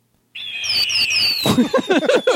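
A sharp, high whistling screech like an eagle cry rises over a sound-effect firework, then gives way to a rapid series of loud crackling bursts and pops.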